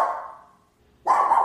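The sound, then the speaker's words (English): A dog barks loudly, one sharp bark that trails off, then after a brief pause a second forceful bark. No one speaks. “No, there's somebody out. Pissed off.”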